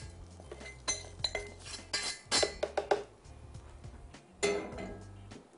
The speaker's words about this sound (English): Okay, now my onions are just beginning to caramelize and those aromatics are smelling fabulous. I'm going to go ahead and remove them from the heat and add them to my blender.